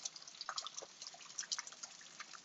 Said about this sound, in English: Hey, I hope you guys hear the rain outside.